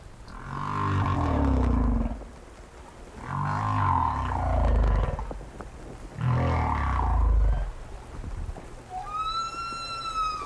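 Humpback whale song: three long, loud, groaning moans with a rich harmonic tone, each swelling and fading over about two seconds, then a shorter rising whoop at the end. No one speaks.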